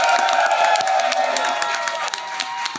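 An audience applauds and cheers in a steady, loud wash of clapping with bright whoops on top, the noise holding level for about three seconds with no voice speaking over it.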